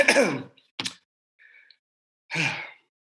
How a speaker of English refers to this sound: So, yes, let me clear my throat for a second.